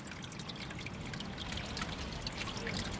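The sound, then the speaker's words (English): Water trickles steadily from Te Wai Ariki, a spring hidden below the city of Tāmaki Makaurau, in a continuous babble with small splashy flickers and no voices, holding an even level throughout. “Te Wai Ariki is just one of the many puna and streams hidden below the city.”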